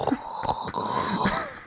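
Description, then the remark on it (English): A person imitates the roar of the ocean with a breathy, rushing hiss from the throat, rising and falling in short surges, moderately loud with no other sounds. “I've just the roar of the ocean.”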